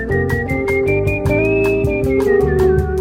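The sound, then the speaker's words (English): A clear whistled melody floats over steady rhythmic guitar accompaniment in a jazzy tune. One musician whistles and plays guitar throughout, the whistle holding long sustained notes while the strummed chords pulse evenly underneath. No one speaks. “who plays, whistles and plays guitar on this all the way through.”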